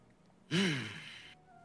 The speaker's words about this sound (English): Why is … breathing heavy?